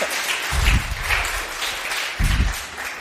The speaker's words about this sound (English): And yeah, I just love this church. I love you guys, and give them an applause, please.